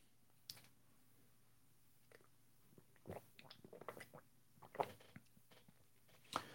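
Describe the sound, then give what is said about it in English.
Someone sips water from a glass: quiet, wet mouth clicks and small slurping sounds come in scattered bursts, with no talking. “Some of you might be waiting for the sip of the day, but that's not coffee.”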